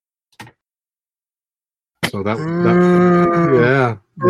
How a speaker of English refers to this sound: I hear cows on there.